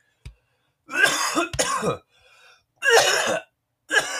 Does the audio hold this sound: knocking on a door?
no